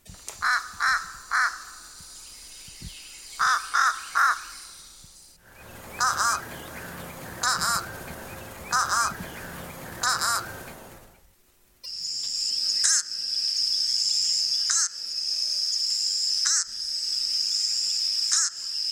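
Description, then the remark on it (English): Short, weak, nasal fish crow caws, often two-noted, come in quick pairs and small clusters against a steady background of insect trilling that grows louder later on. “The next one is the fish crow. They make a weaker, more nasal, and often two-noted caw.”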